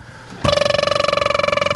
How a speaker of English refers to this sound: Excuse me, there's the cat phone is ringing.